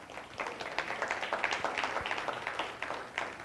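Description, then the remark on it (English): An audience applauds itself, a dense patter of many hands clapping at a steady, moderate level for a few seconds with no voices over it. “So can you give yourselves a hand for that?”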